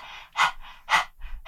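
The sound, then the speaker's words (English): A person with tongue out imitates a dog panting as a breathing exercise in a yoga class, rapid, breathy huffs in a steady rhythm, about three strong exhalations alternating with softer inhales, fairly loud with no talking. “Just, if you can now, stick your tongue out like this and just do the doggy panting.”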